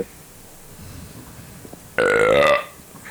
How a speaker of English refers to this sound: That was probably my best burp on the podcast, actually.